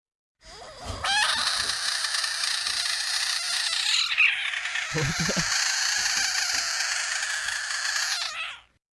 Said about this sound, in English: Do you know what a screeching frog sounds like?